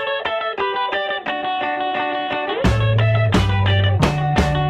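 An upbeat indie rock song plays loud, bright guitar lines over steady drums, with a heavier bass-driven section crashing in halfway through. No one talks over it.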